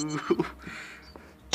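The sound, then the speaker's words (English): Glass falls and clinks: a couple of sharp knocks in quick succession, a softer rattle, then a bright high ring at the end, with a voice-like tone at the start. “Did you broke your glass? No.”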